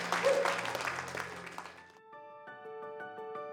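A church audience in the Western Maryland area gives God loud, dense applause and shouts of thanksgiving and praise over low sustained organ-like tones. After about two seconds it fades out, leaving steady keyboard chords pulsing rhythmically.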